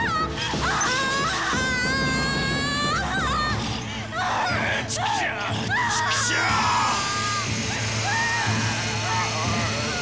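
A man screams and yells loudly and harshly in strained, wavering bursts throughout, amid a dense, chaotic background of clattering and crashing noise.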